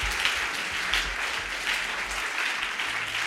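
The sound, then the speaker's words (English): An audience at a prayer meeting clapping their hands to God in a steady, dense wash of applause that holds at an even, fairly loud level for a few seconds, with no one speaking. “Clap your hands and give God a freedom here.”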